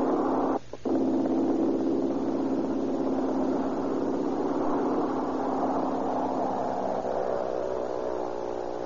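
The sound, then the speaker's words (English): A small red propeller plane's engine roars steadily and loud as it takes off over Southern California, a dense buzzing drone whose pitch creeps upward as it revs, with a brief stutter near the start and no voices. “Little mechanical red bird skims across the gloom of the air drone, sees the top of the grass, and falls toward the heavens.”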